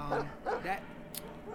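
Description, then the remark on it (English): Three quick dog barks ring out in a short burst, sounding somewhat echoey, followed by a brief sharp click and quiet background noise. “That dog is definitely down here.”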